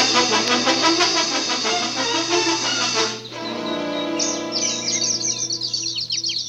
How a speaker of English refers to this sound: The birds are making me nervous.